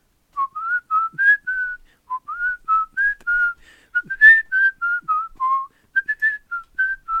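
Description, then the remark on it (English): A person whistles the Happy Birthday tune alone, with clear, moderately loud notes in short connected phrases and brief pauses between lines, no talking over it. “Can you whistle happy birthday?”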